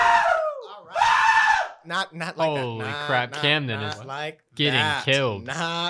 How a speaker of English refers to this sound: We're recording in a live studio. Everyone back up a little bit from the microphones and then scream a little bit.